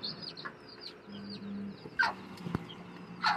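Small mini chickens cluck softly while being given water, with two sharper, louder clucks standing out near the end over a steady low hum and faint high chirping in the background. No one speaks.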